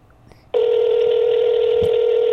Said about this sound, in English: Two rings. I'm betting it will go to voicemail. Three rings, and it's going to go to voicemail.